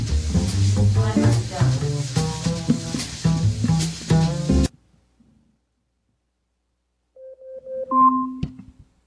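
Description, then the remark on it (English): An Echo smart speaker's timer alarm goes off: after a stretch of busy, clattering noise and a brief pause, a short sequence of clear electronic chime tones rings out at moderate volume. “Your stupid Chinese timer is done.”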